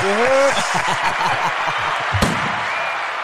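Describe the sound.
A dense wash of clapping and crowd noise fills the moment, steady and fairly loud, with a voice speaking briefly at the start and low talk continuing underneath.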